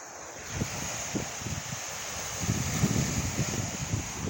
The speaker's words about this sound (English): Beautiful sound. I'm at 12th Street Beach in Chicago, Illinois. Listen to the sound of the water. Very beautiful. Very serene.